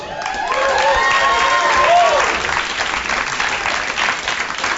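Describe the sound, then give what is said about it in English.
An audience in Philadelphia, Pennsylvania applauds steadily for several seconds, a dense wash of clapping with a few raised cheering voices rising and falling early on before the clapping carries on alone. “They were applauding as I did such a good job saying the name of the place where they live.”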